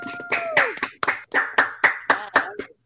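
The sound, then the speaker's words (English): A quick run of about nine sharp hand claps in a steady rhythm, with voices whooping and cheering over them. “Round of applause. Round of applause.”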